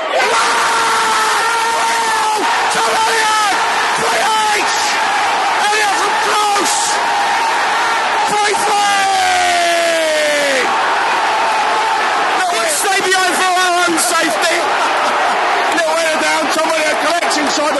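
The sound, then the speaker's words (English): A football crowd of Lions fans roars and cheers loudly and continuously as their team equalises at 3-3 against Leeds around 87 minutes, a dense wall of shouting voices with rising whoops and chants swelling throughout, never dropping away. “Lions fans going potty.”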